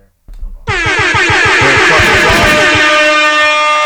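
A brief low rumbling boom, a bomb-drop sound effect, leads straight into a loud, sustained blare of stacked air horns that keeps going steadily for over three seconds, with no talking.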